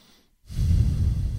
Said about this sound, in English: Sometimes it's good to relax and let your parasympathetic nervous system kick in. I look to do that when applicable. So breathing through your nose, highly recommended.